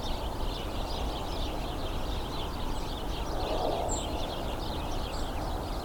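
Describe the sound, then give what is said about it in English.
A flock of about 35 house sparrows chirps continuously, a dense, overlapping chatter of many birds at steady intensity, heard over a constant rushing background noise. “I've seen several leave and no real change to the intensity of the number of house sparrow calls I'm hearing.”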